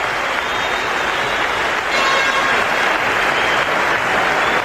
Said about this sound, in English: Sportsmanlike crowd here at the Gardens, and they applaud as Mike Bossy is taken off on a stretcher.